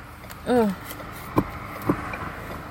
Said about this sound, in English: And I'm in this traffic right here. Lord, have mercy. Traffic is so heavy this morning. It's 10:30. People should be settled in by now.